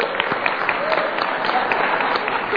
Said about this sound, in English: I said to the first service, we clap for anything, right? You know, we're having a baby.